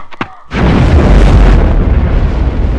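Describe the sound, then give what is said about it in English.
A couple of quick clicks give way to a sudden, loud blast of an incendiary grenade exploding, followed by a sustained, roaring rumble of fire that stays heavy and broad without fading. “That's an incendiary grenade, Bunny.”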